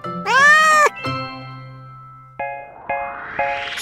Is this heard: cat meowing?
yes